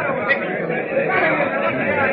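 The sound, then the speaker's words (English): A crowd mills about at the office of the squadron commander at a naval base as bad news spreads, in a steady, dense murmur of overlapping voices, no single word standing out, holding at an even moderate loudness throughout. “Meanwhile, back at the naval base, crowds mill at the office of the squadron commander as the bad news travels like wildfire.”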